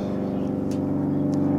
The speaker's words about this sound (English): That one's a loud one. What the hell kind of airplane is that? Oh, it's like an old school propeller one. That is a it's a fancy airplane. That's one of those amateur guys. Learning. In the airplane. Yeah, learning in a propeller.